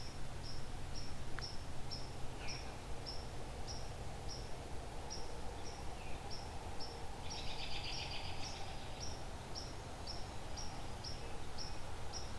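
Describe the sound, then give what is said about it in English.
A white-throated sparrow call: thin, high notes repeated steadily about twice a second for the whole stretch, with a brief fuller chatter midway, over faint outdoor hiss. “A very talkative, I think that's black, or sorry, that's a white-throated sparrow, that call.”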